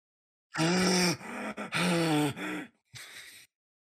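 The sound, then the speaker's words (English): Loud, exaggerated ASMR breathing into a microphone: a few long, drawn-out breaths with a voiced, groaning edge, then a softer airy exhale, with no talking. “ASMR breathing.”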